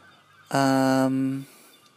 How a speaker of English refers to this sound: There are seagulls flying everywhere. I'm terrified one's going to fly in my window because I'm quite high up.